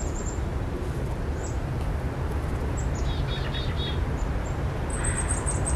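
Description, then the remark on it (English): A black-capped chickadee calls, recorded in the wild: thin, high chirps scattered throughout, with a quick run of four repeated notes midway, all set over a steady hiss of background noise. No one speaks. “The bird calls were recorded in the wilds”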